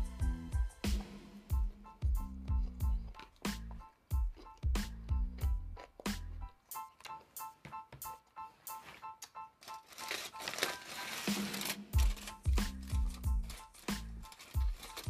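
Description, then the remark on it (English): Repeated crisp crunching from someone chewing salad, a dense, irregular run of sharp crackly bites with heavier thuds mixed in, fairly loud, with no talking over it. “You hear some crunching in the background, that's me.”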